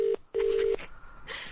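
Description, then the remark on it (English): A telephone ringing tone on an outgoing call: a steady electronic tone sounds in two pulses, one short and one longer, followed by faint noise on the line. “Oh, it's ringing.”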